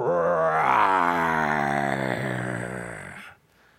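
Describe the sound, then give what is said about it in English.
A father lets out one long, loud, growling roar in imitation of a lion while his young son looks into his mouth. The pitch rises, then sags slowly over about three seconds before stopping abruptly. “I said, "Daddy's got a tiger in his tank. It's actually a lion, the lion of the tribe of Judah."”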